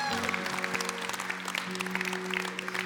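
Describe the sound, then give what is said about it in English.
A church audience at the Niwot campus applauds steadily on a Sunday morning, a dense crackle of many hands clapping at once, with a low sustained tone humming underneath throughout. “Hey, everybody clap.”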